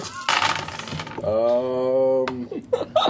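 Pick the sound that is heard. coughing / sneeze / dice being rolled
dice being rolled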